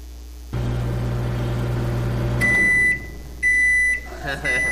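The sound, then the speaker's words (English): A microwave oven hums steadily as it runs, then stops and gives two long, high-pitched electronic beeps with a short gap between them, followed by a brief clatter. “It's that you've been standing in front of the microwave waiting for the Stouffer's to get done”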